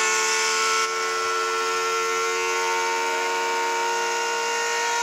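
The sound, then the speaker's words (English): In a recording of the Montreux Casino fire during a concert, a loud, steady siren-like wail holds a sustained, droning pitch for several seconds without pause, rich in buzzing overtones and with no voices present. “Sounds like a siren.”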